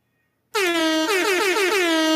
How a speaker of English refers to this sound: Air horn for Pomelo.